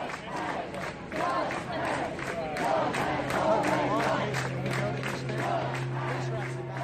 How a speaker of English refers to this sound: And then there's all these pastors that were chanting and clapping, "Love has already won. Love has, love has, love has already won."